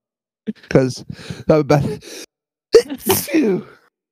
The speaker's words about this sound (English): I was holding in a sneeze.